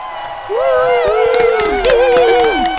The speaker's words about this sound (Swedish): Ja, men kan vi inte ha en applåd här nu tycker jag.